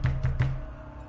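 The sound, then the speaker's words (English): Three heavy bangs on a metal door in quick, even succession, each with a deep booming resonance, followed by a low ringing hum that slowly fades. No voices. “Sounds like one of the metal doors nearby.”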